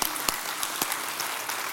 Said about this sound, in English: So, but this past year, we had 230 decisions for Christ. Can we give God a round of applause for what he's doing?